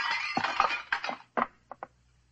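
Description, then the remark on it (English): A thrown statue, one of a collection of art figures, shatters against a wall: a sharp burst of crashing, clattering breakage, then a brief pause and two small bright clinks as fragments fall. No one speaks. “He ducked, and the statue shattered against the wall.”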